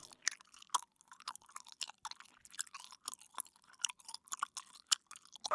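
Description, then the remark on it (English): Someone chewing bubblegum, with a steady run of wet, sticky smacks and clicks repeating several times a second. No voices, just the continuous mouth noises. “We've got car horns, power drills, crying babies, dogs barking, people chewing bubblegum.”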